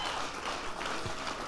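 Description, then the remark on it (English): A crowd at a Teen Challenge Ministry event applauds Pastor Ron Brown steadily, a dense wash of many hands clapping at once with no pauses, fairly soft, with no voices over it. “Come on, let's give it up for Pastor Ron Brown one more time.”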